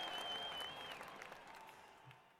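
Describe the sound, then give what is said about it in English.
A burst of crowd applause, dense clapping with a thin whistle riding over it at first, steady and loud before gradually tapering off over a couple of seconds. “Applause for that.”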